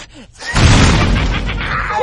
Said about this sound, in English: Oh. Wow, that was an expensive-looking explosion. I can't believe we had that in the budget.